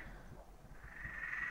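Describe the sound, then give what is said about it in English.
A steady chorus of frogs croaking outdoors across a neighbourhood after sundown, heard through an open window, a dense, continuous trilling drone from many animals, fairly quiet, with no voices present. “It's been really nice, actually, being serenaded by frogs.”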